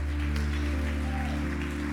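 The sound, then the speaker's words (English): An audience claps for the Lord in a steady, continuous wash of applause, set against a sustained low hum of held tones that runs beneath it throughout. “Let's clap for the Lord.”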